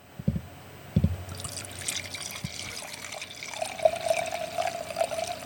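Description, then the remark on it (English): A couple of soft knocks, then a steady stream of liquid pours into a glass, its gurgling pitch rising as the glass fills. Clear, with no talking. “Wait, let me pour the last glass.”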